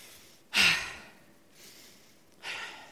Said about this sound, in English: Take a couple of deep breaths first.